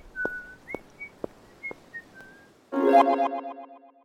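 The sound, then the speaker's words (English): A lively tune whistled in short, bright notes with a bouncy rhythm, clear, followed by a louder, fuller burst of sound that fades over the final second. “She turned into the sunset once more, this time barely suppressing a lively whistled tune.”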